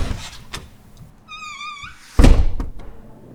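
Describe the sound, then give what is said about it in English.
A library door creaks open with a brief, wavering squeal from its hinges, then swings shut with a heavy thud followed by a few light rattling clicks. “parks her bike and approaches the door.”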